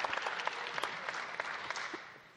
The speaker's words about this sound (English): Yes, applause for those of you who are seated.